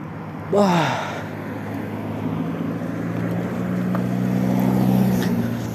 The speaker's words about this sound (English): Oh, fuck. God damn it. I got the hiccups.